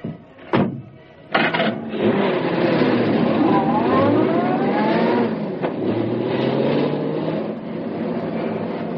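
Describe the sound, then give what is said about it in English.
Britt Reed's convertible car engine turns over with a couple of sharp bursts, then catches and revs, rising in pitch as the car pulls away and drives off at a steady, fairly loud level. “He waited until the last of the police cars had left. Then he stepped into his convertible.”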